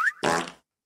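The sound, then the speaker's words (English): A single short fart sound, loud: a brief rising squeak followed by a buzzy, flapping blat lasting under half a second, with no talking around it. “That was a fart.”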